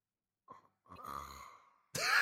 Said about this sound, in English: That's just me breathing at my mouth.